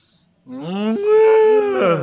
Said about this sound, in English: So that was improv, obviously, because, you know, cows are making noise and stuff. Yeah. But the reason why the cows were making noise is because there was a cow giving birth off camera.